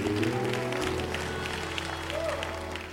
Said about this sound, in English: Clap those hands and give God a hand of praise.